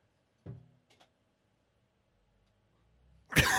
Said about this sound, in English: No one wants to hear your cough, mate. I'm trying. I don't have a cough button here.